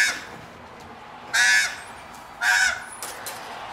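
Two harsh, loud caws from a crow, spaced about a second apart, followed by a fainter third call over a quiet background hiss.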